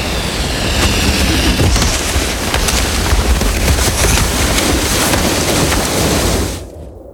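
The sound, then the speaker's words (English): An avalanche roars in a loud, unbroken rumble like thunder, a dense wash of noise from deep lows to hissing highs that holds steady for about six seconds before abruptly dropping away. “What's that sound? Is that thunder? How could... Oh, my God. Oh, my God. An avalanche.”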